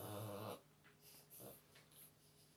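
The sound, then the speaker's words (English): An old dog gives a loud, harsh snort, followed by several quieter wheezy breaths and snuffles at irregular intervals, with no voices. “What is wrong with this dog?”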